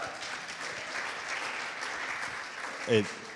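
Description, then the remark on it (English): An audience claps steadily in a dense, continuous wash of many hands for several seconds, with a brief voice rising above the applause near the end. “It's because, yo, you can clap on that.”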